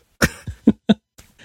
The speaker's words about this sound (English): The pre-roll is you coughing.